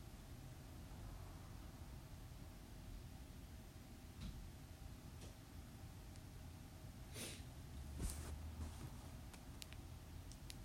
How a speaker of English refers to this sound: Don't mind me, I'm just over here breathing.